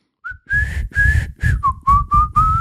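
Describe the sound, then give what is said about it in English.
A bright whistled melody of about eight short notes, stepping down partway through, plays loud over a thumping low backing beat, like the start of a song. “You can literally, the moment I hear that song, when I hear that opening whistle, you're like, here we go.”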